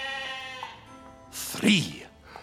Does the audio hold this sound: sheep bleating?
yes